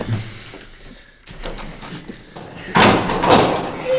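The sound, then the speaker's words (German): Clicks and clattering as a key left in the lock is turned, followed by a louder rush of noise as the door swings open, without speech. “Komm, das muss hinter der Tür sein.”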